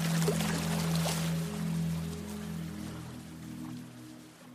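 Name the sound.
ocean waves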